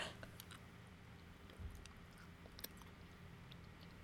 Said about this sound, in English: she's, like, struggling with chewing this thing.